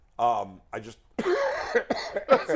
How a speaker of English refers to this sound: What's that? Get out. You cough. Get out. I'm not sick.